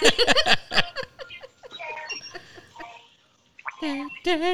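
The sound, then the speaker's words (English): An alarm on a son's mobile phone, left switched on in a room, plays a melodic electronic tune of bright, stepping tones that ends in warbling, wavering notes, with a voice talking briefly at the start. “he left his phone on in my room”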